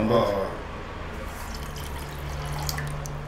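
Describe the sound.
Water sloshes and splashes around inside a pot, a steady liquid churning that continues for a few seconds, with a brief murmur of voice at the very start.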